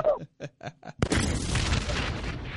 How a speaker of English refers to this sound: First, man, can you give yourself the explosion button, bro?